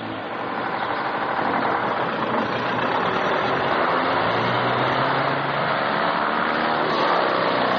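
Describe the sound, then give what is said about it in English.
A heavy lorry engine roars steadily and loudly throughout, a dense continuous rumble as the lorry sets off at speed along the road toward London, with no voices. “Once they're all inside, the lorry sets off at speed.”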